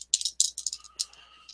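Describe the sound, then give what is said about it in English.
Dice rattle and clatter in a quick burst of sharp plastic clicks, rolled as a library roll with a penalty die, a few rapid bounces that trail off as they settle. No one speaks. “We'll just do a penalty dice.”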